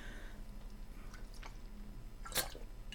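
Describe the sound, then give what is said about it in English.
A woman steps away from her microphone for a quiet little sip of a drink: a few soft, wet clicks and slurps spread over a few seconds, ending in one slightly louder gulp-like sound over a low background hum, with no talking. “And again, I am going to pause as she wanders away from her mic for a little sip.”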